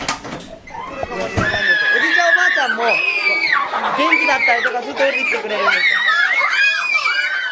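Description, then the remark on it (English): A crowd of young children at a preschool combined with a nursing home, shrieking and squealing at once as they run around, a steady, loud chorus of high-pitched excited voices with overlapping chatter that starts after a brief moment and never lets up. “You walk into the room and you are bombarded by these little bodies screaming and flying around, and the vitality, man, is just over the top.”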